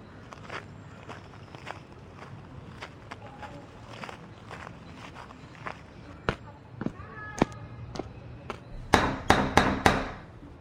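Footsteps tread along for several seconds, then about five loud, sharp knocks rap in quick succession on the wooden double front door of a gothic house, painted deep red, with a brass doorknob and a door knocker shaped like a crow or raven.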